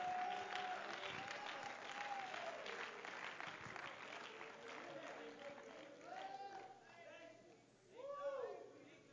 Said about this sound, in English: Our God is able. Anybody believe He's able? Why don't you stand to your feet right now and clap your hands to the Lord? Come on, let's give some praise unto the Lord right now.